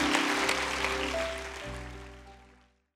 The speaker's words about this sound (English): Give Jesus a hand clap as Pastor Nancy comes.